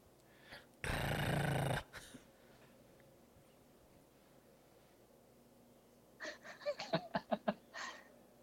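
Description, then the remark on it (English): A loud rough burst of noise opens, followed after a pause by a run of rhythmic guttural pulses like a dog growling and snarling; the dog, named Barney, is being held back by a woman. No one speaks. “She's holding back the dog.”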